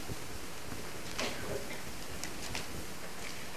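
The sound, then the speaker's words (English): Soft, continuous papery rustling of Bible pages being turned to Ephesians chapter 5, verse 15, with a few brief crisp flicks rising out of a low, steady hiss. No one speaks. “A beautiful sound to hear the pages turning.”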